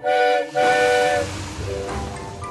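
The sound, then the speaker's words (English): A steam locomotive whistle sounds loud in two shrill blasts, the second longer, then fades into a steady rushing hiss of escaping steam with low chuffing rumble beneath. “I don't think she likes steam engines very much.”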